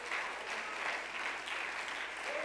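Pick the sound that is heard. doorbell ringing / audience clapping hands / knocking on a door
audience clapping hands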